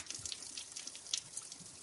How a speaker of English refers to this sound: Well, very predictably, the water is coming out through the holes, but it's coming out quite a long way, squirting out a good couple of foot from the very bottom hole.